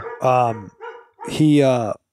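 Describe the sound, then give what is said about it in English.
A dog barks loudly at someone at the front door, two drawn-out, harmonic barks with a short whine between them, sounding agitated. “Sorry, my dog's going nuts. Somebody's at the front door.”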